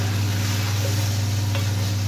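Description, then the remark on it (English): Broccoli sizzles in a frying pan covered with a crockpot lid, with a steady, even hiss and faint crackle over a constant low hum. Nobody speaks. “Pop the crockpot lid over the broccoli fry pan just to speed up that process a little bit.”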